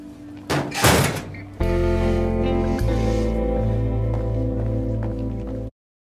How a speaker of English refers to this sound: Sean stays storming away from Emma and slamming a locker, because I'm pretty sure I have a very similar like sound clip where he slams a locker by Emma, or he hits a locker, and they play the dramatic ass moment music